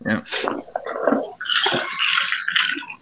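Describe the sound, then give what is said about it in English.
Sipping of bourbon, with a slurp followed by wet swishing and aerating mouth noises as the liquid is tasted, continuous for a few seconds with no talking. “Let me try it.”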